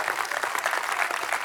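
A church audience claps their hands to the Lord, a dense, steady patter of many overlapping claps at an even loudness throughout, with no voices standing out above it.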